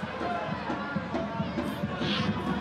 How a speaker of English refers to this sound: Jeez, big crowd.